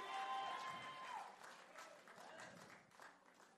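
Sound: audience clapping and shouting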